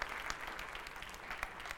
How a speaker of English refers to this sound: Wow. I think he deserves a clap for that. Amen.